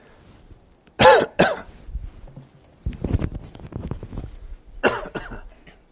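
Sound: coughing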